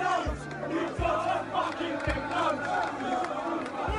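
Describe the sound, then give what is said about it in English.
A large football crowd at a Tottenham game makes a sustained, loud anti-Semitic hissing noise imitating gas in the gas chambers, a dense wash of breathy sound that never lets up, with a few deep thuds at irregular intervals underneath. “And this pernicious hissing sound, which you still hear at some games, the hissing of gas in the gas chambers.”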